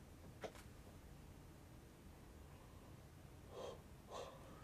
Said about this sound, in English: I got another yawn coming.